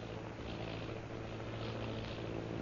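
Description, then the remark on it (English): A steady, droning airplane engine hums continuously, with a low throbbing rumble and a broad roar that swells slightly, heard alone without any talking. “Sounding like airplane.”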